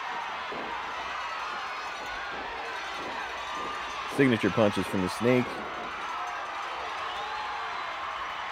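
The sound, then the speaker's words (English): A large wrestling arena crowd roars steadily throughout a match between Jake and Ted DiBiase while a commentator talks over it, the noise swelling midway into a few loud, rhythmic bursts of cheering before settling back. “Man, this crowd is fired up.”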